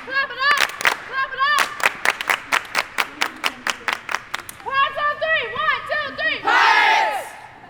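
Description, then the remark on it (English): A crowd claps in a steady, quick unison rhythm while many voices shout and chant over it, building to a loud burst of cheering at the end. “Clap it up!”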